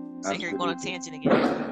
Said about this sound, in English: Oh my God, I think they have fireworks going on. It is. Oh, is it? Yeah. Oh, Columbus Day, right? It's Monday. One of those. There There they go.